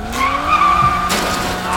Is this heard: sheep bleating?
no